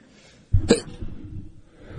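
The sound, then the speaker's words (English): A host on the radio show Sports Talk Mississippi sneezes once, sharply and loudly, ending almost at once, followed by a low, steady background rumble. No one speaks. “Had to sneeze.”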